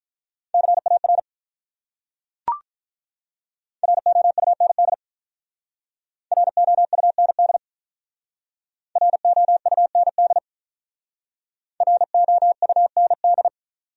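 Rapid Morse code at 35 words per minute, sending words from a list of the top 300 words: a steady mid-pitched tone keyed in five quick bursts of short dits and dahs, separated by pauses, with one sharp click early on and no voices.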